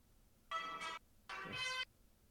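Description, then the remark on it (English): A phone plays a whip crack sound effect twice, set off by whipping the phone forward. Each is a bright, buzzy burst lasting about half a second with a short gap between, loud and alone with no talking. “you actually have to whip the phone forward, and it does the whip sound”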